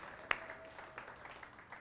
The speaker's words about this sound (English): He'll come when we clap.